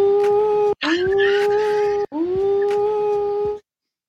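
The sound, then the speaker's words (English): A voice imitates a steam train whistle with three sustained, steady-pitched hoots, each with strong harmonics and a slight upward scoop at the start, separated by brief gaps, loud and alone. “And then the steam whistle sounds like”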